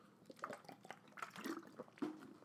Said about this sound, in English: I'm going to drink some water because this could take a minute.